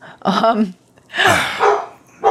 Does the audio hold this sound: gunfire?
no